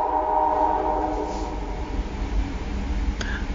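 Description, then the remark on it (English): A train horn sounds a long, loud chord that gradually fades while the heavy, steady rumble of a passing train continues underneath, with a sharp clack near the end. “11:15 train?”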